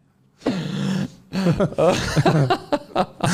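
A man clears his throat with a long, rasping rumble, then follows it with a string of shorter, gruff guttural bursts that trail off in quick pulses.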